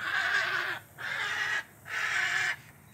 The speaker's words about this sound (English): These bad boys will just be behind you. You don't know it. And they let out a nice heron squawk, which sounds very much like a dinosaur.